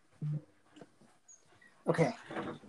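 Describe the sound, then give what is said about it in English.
A pet dog whimpers: a short low whine, a few faint stirrings, then a louder burst of breathy whining and whimpering near the end. “Give me just 1 second, because my dog is being stupid.”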